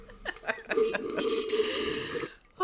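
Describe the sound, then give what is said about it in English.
A loud, drawn-out slurp of hot tea sipped from a cup, lasting about two seconds with a wet, gurgling texture, then a quick break before a faint sound at the very end. “Let me sip my tea.”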